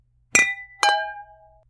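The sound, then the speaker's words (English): Two bright clinks of wine glasses in a toast, about half a second apart, the second ringing out longer with a clear, sustained tone that slowly fades, with no voices. “So, without further ado, let's do that. Let's try our wines. Okay. Cheers. Cheers.”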